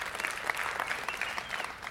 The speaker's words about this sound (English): Polite applause. I appreciate that.